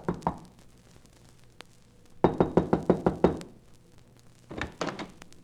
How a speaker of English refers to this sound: I tried the door, but it was locked, so there was nothing for me to do except knock.